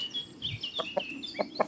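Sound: chickens clucking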